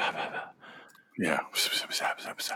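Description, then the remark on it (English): A film's whispering sound effect: breathy, wordless whispering with a hushed hiss, first a soft murmur, then a string of short, sharp sibilant bursts in an uneven rhythm, moderately loud. “That's the only thing like we could think of that it sounds like, that it almost kind of sounds like when Rey is on the island and she hears like the tree whispering to her.”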